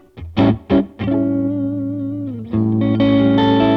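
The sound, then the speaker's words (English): A distorted electric guitar plays through an overdriven small Marshall tube combo amp with the volume at five, halfway up. A few sharp chugged hits give way to a sustained, gritty chord that rings out, briefly cuts, and returns loud and saturated. “Which Small Marshall Tube Combo is the Best?”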